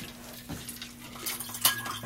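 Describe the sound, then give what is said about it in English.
A spoon gives a quick stir to a highball drink made with soda or fizzy water in a glass, with light metallic clinks and scraping over a couple of seconds and a faint fizzy hiss underneath. There is no talking. “We'll just give it a quick stir because if you stir your sodas or fizzy waters too long, you'll stir all the fizz out of them.”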